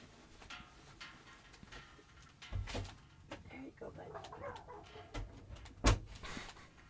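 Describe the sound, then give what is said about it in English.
A door is opened to let a small dog, about 5 pounds, out, with a couple of sharp clunks and rattles a few seconds apart, over quiet room noise and faint indistinct voices. “yeah, I'm going to let my dog out real quick.”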